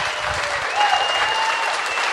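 An audience applauding, dense steady clapping that holds at an even level for a couple of seconds, with a faint whistle rising briefly above it.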